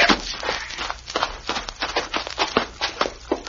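Footsteps of several men walking right into a house without knocking, a busy, uneven patter of scuffing steps and thuds overlapping one another, moderately loud, with no talking over them.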